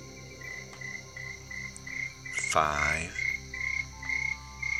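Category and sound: insect, crickets chirping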